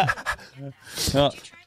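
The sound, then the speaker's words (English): A person mimics a small dog's sneeze with their voice: a few short voiced yips, then a sharp breathy burst and a snorting tail, fairly loud. “Okay, so like when they like sneeze, you know when they're like, yes.”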